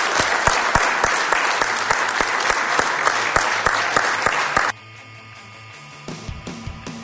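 An audience at a craft beer session breaks into loud, dense applause for a speaker, many hands clapping steadily for several seconds before it cuts off abruptly, leaving a quiet, soft tonal background.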